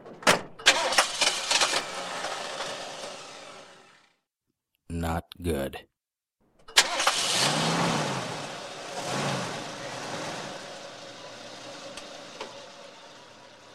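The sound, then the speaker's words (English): A driver behind the wheel cranks a car engine with rapid rhythmic chugging and it dies out; after a brief spoken remark, it cranks again and roars to life, settling into a steady, fairly loud running rumble. “I sat down behind the wheel of my car and turned the engine.”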